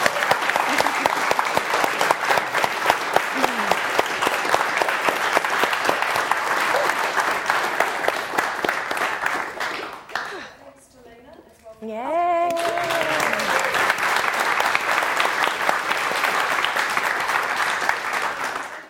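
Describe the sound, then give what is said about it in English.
Sustained audience applause at the end of a talk, a dense rattle of many hands clapping loudly, breaks off briefly midway while a voice speaks, then resumes just as strongly to the end. “They preempted my clap, so you're just going to have to do that again.”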